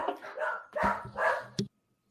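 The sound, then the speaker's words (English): A dog barks in a quick run of about four sharp, loud barks, the last one short and abrupt, then silence. “Your dog is mad.”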